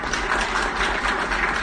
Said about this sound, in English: So ladies and gentlemen, a big round of applause.